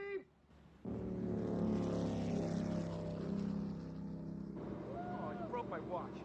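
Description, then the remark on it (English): A motorboat engine roars steady after a brief quiet start as the boat jumps over another boat's wake, a loud continuous drone with water rush, while voices briefly talk at the beginning and near the end. “Not supposed to do that on a boat. You're not supposed to jump over someone's wake that close.”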